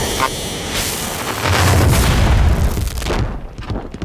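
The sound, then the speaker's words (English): A ship crash-landing in a theme park parking lot: a loud, sustained crash rumbles with heavy low booms and crunching impacts, swelling in the middle then breaking into scattered clattering debris before fading out. “So, we crashed for, you know, like the second time that week.”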